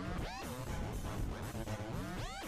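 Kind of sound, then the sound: human body sound, sneeze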